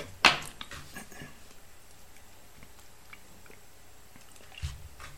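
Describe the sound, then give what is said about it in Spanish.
Someone pauses speaking to take a quick sip of water: a sharp click at the start, then soft wet mouth and swallowing sounds, and a dull thump near the end. No one speaks. “Perdón, voy a tomar un poquito de agua.”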